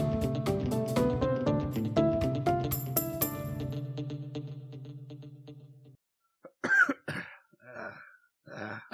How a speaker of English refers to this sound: Get your cough in.